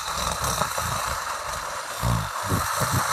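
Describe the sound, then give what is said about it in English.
A person imitates a cat's purr with a steady, raspy low rumble of rapid pulses lasting about three seconds, swelling slightly louder toward the end, with no talking. “That's my best purr.”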